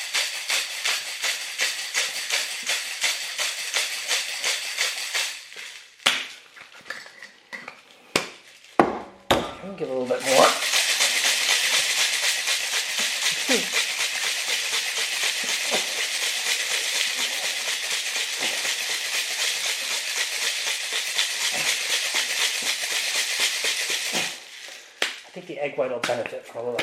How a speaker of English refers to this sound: Cracked ice into the shaker, and I am going to shake hard.